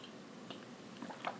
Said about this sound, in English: Hold on, gotta take a sip of water.